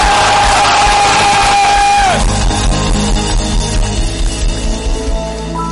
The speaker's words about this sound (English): Clap your hands and give God a mighty shout.